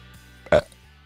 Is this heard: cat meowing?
no